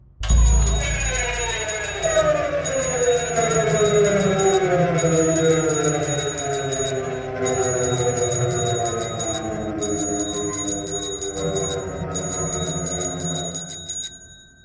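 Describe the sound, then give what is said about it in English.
A shrill bicycle bell rings over and over in rapid trilling bursts with brief gaps between, loud, layered over a dense, rumbling lower background that sounds like a raised voice; the bell's rider rings it repeatedly while chanting "Begone!" “I willed my body out of its catatonic prison and rang my bicycle bell repeatedly, chanting, "Begone!”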